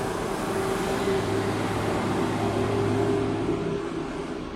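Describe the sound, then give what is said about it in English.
A continuous, loud roar of cars passing outside, a broad rushing hum with a faint steady low drone underneath, holding level for several seconds with no voices. “Oh, sorry, just loud cars.”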